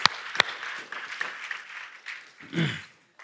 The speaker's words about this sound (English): I want to invite those who are getting baptized to come on up. So give them a round of applause as they're coming up.